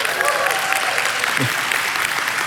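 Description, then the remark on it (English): An audience at a service claps steadily after an acrostic poem is recited, in a dense, even wash of applause, with faint voices murmuring underneath. “No, don't clap for me.”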